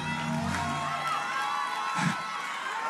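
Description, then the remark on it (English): A church audience screams and cheers loudly and continuously during a service, a dense wash of voices with shrill whoops rising above, swelling briefly before settling back into a sustained roar. “Somebody scream, I'm a miracle!”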